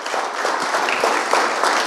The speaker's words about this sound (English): Give him a round of applause as he comes up.